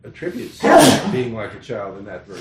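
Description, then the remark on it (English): A sharp, loud sneeze bursts out near the start, cutting across a man who keeps talking steadily before and after it. “Bless you, isn't it?”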